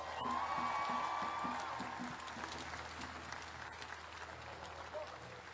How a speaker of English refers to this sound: Can everyone give him a round of applause?